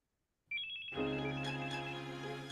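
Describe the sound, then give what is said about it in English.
A phone ringtone for an incoming call starts after a brief silence in a studio: a bright chime, then a fuller melodic ring that continues loudly and steadily. No one speaks. “But before we start, guys, I gotta take a real quick phone call here.”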